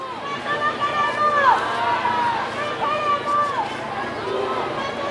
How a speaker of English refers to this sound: You can hopefully hear the chopper above us, which is kind of just a constant drone in the background. And I mean, there's just a sea of people all kind of driving forward. They're going from Kelvin Grove, marching through the park here